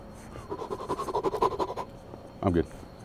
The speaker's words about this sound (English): Am I like breathing super heavy? What they put in this coffee? I'm all amped up now. Goodness gracious.